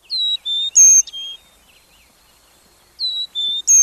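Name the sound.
chickadee calling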